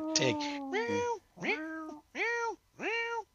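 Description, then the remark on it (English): A person imitates a cat, giving four or five drawn-out, whiny meows in quick succession, each rising then falling in pitch, fairly loud, with short pauses between them. “I was just doing the meows.”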